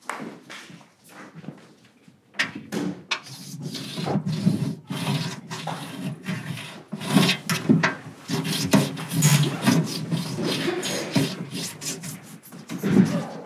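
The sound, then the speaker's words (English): A pencil is rubbed and pressed hard against the underside of a wooden desk in repeated rough strokes, a raspy grinding that starts after a brief quiet and continues steadily, with no talking. “I rubbed the pencil under the desk and pressed on it real hard.”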